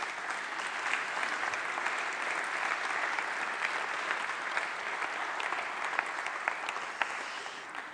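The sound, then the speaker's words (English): A church audience claps steadily for several seconds as a church member comes up to the front, a dense, even wash of applause with scattered sharper individual claps and no voices. “Can you give her a big round of applause as she comes?”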